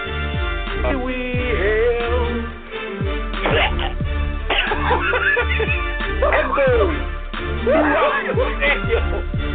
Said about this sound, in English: There is a pause throughout the stadium as this man sounds like he just coughs up a lung.